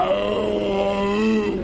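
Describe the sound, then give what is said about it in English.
A seal with saliva and herring guts dripping from its mouth makes a loud, drawn-out, speech-like call that mimics the rhythm of "how are you," a throaty, groaning voice with a gently gliding pitch and no other sounds. “I'm filled with a feeling you can only get when a seal with saliva and herring guts dripping out of his mouth asks you how you're doing.”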